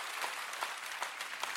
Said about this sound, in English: How about 1,685 salvations and dedication? That's where we clap. Come on, come on, come on.